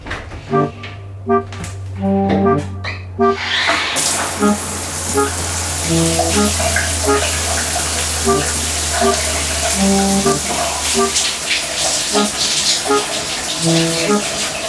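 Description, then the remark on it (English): A morning shower turns on a few seconds in and runs steadily, a loud hiss of spraying water that continues to the end, with faint voice sounds underneath; started at normal temperature, then the hot water is turned off at the end for a cold shower. “So this is the biohack that I'm probably least looking forward to trying, a cold shower in the morning.”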